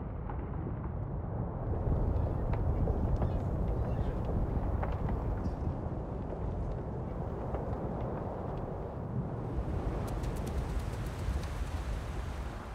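A continuous, loud rumbling roar from a Strombolian volcanic eruption, a type named after the Italian volcano Stromboli, its explosions driven by the release of dissolved gases, with dense low booming and crackling bursts throughout, steady in intensity and heard without any voices.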